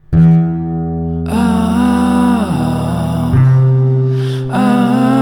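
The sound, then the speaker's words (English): A well-known song, slowed down and drenched in added reverb: a drawn-out sung melody glides over deep, sustained bass notes, playing loudly and continuously with no talking. “We've moved on, we've evolved, we've taken well-known songs and slowed them down and added plenty of reverb and made them sultry.”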